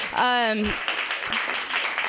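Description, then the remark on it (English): A loud, high whoop from the crowd rings out, followed by a steady wash of applause and cheering that keeps going for a couple of seconds. “Let's get a round of applause for my boobs right now.”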